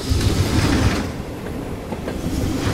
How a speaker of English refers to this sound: Hello, Nevada! It's Will Mallard and the night train coming through!